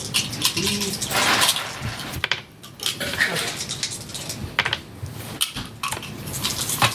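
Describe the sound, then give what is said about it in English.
Two six-sided dice rattle and clatter across a hard tabletop in a quick series of sharp little clicks, rolled for a game check, with people murmuring in the background. “Just one dice, or? 2d6 plus your wisdom modifier.”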